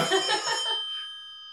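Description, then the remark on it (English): A short burst of an old rotary phone's mechanical bell, a rattling metallic ring that cuts off and leaves bright, high ringing tones fading away over about a second. “Is that an old rotary phone?”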